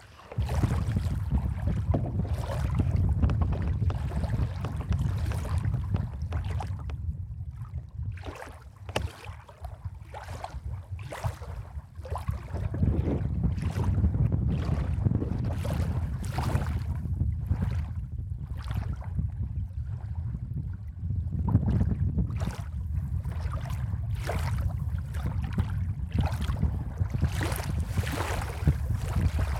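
Water at a beach sloshes and splashes in a steady run of small, irregular bursts as a person puts their bare feet in it, over a constant low rumble of moving water and some wind.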